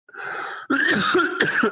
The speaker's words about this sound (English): Sorry, I felt that cough coming for a while. I was like, hold it.